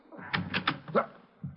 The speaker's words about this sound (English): Well, I guess maybe we better bust it in, huh? Okay, give me a hand. Put your shoulder against the door. Now, one, two.